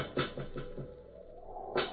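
Soft knocking and tapping from behind a closed, locked door in the dark: a quick run of four light raps, a pause of about a second, then one firmer knock. Faint, with no voices.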